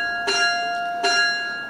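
A bell rings out twice, about three-quarters of a second apart, each clear strike followed by a sustained, shimmering tone that carries on between and after the hits.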